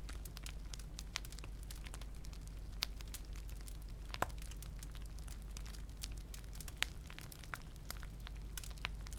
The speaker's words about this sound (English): In hearing nothing but the sound of the restful and hypnotic crackle of the fireplace, your body begins to settle. The snow outside dampens and absorbs any sound, almost as if creating a habitat just for sleeping.